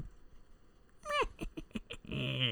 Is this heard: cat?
yes